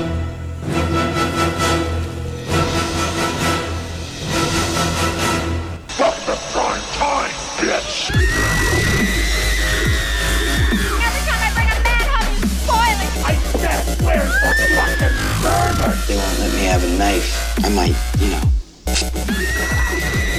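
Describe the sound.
A dubstep intro where loud, dense electronic music builds, then a shrill, sliding scream cuts over heavy, pounding bass, with a brief dropout near the end.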